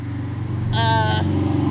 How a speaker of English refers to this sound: Motorcycles suck.